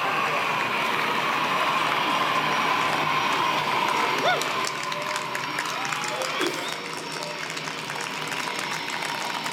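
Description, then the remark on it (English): A jet-powered car engine roars in afterburner as the car accelerates from 0 to just over 200 miles an hour in under six seconds, a dense, steady, hissing blast that fills the whole clip and eases slightly toward the end, with faint crowd voices mixed underneath. “goes into afterburn, he then turns the engines off, and he was still accelerating.”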